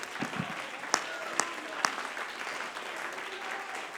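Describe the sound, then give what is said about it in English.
A church audience clapping hands unto the Lord in a steady, dense wash of applause, with a few sharper, louder claps standing out early on before the clapping continues evenly to the end. “Somebody clap your hands unto the Lord in expectation for what he's about to do in this house tonight.”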